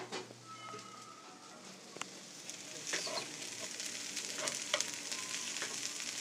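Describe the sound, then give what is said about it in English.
A meal cooking on an open stove sizzles and fries, a steady hissing crackle with sharp pops and spatters scattered throughout, growing slightly busier toward the end, with no talking. “and now the sound of some very delicious meal stuffs cooking on an open stove.”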